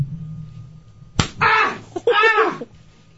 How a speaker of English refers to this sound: All right, let's do the next slap. Final next slap. Final punishment. You ready?